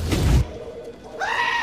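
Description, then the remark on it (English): In a radio advert, a goat hired as security for a data shed bleats once, a short wavering cry near the end, after a brief loud rustling burst at the start. No one speaks. “he hired a security goat to protect the data shed.”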